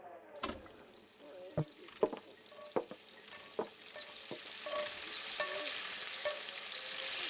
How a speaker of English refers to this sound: A restaurant kitchen. I didn't know there were so many different kinds of pots and pans.